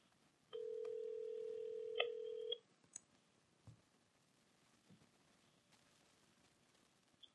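A phone line rings with one steady, two-second electronic ringback tone, followed by a few faint clicks and quiet line noise. No one speaks.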